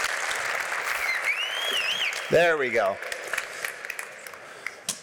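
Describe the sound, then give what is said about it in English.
Steady audience applause for an all-star panel at the end of a panel discussion fills the whole stretch, a dense crackling wash of clapping, while a man's voice briefly speaks over it partway through and a whistle-like tone glides above. “Can I get another round of applause for our all-star panel?”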